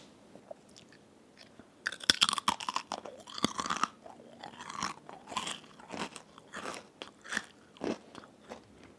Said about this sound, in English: Did you crunch into the microphone? Hell yeah.